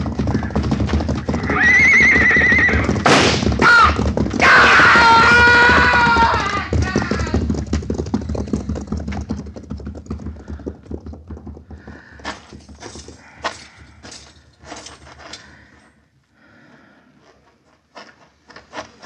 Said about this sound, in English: He fell off right in front of the stampede. They went right over him.